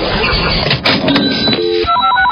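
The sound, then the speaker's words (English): The Channel 94.1 cash register sound effect, played on the Omaha radio station, sounds loud: a clattering mechanical rush, then a run of bright ringing chime tones stepping up and down near the end. No one speaks. “Just listen for the Channel 94.1 cash register.”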